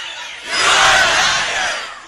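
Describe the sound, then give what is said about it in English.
A loud crowd of Dreamers yells and chants together at Nancy, a dense wall of raised voices that swells after a moment and holds steady, with a few voices cutting through the roar. “Oh, when they were the yelling at her? They're chanting at her?”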